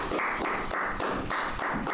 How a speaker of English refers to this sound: Why do we keep clapping? I don't know.